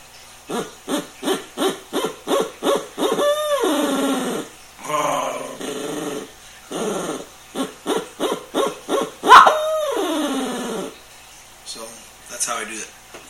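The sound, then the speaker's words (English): A person imitates owl calls with their voice (owling), a rapid series of short rhythmic hoots followed by a rolling, gargled trill done the same way as a turkey purr, then a second run of hoots ending in a loud descending call. “how do you do your rolls when owling?”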